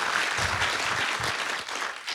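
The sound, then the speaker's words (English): A short burst of audience applause for legislation to end purchases of Russian oil and gas products, dense and steady clapping from a small crowd fading slightly toward the end, with no voices over it. “Yeah, we could clap for that, I think, yeah.”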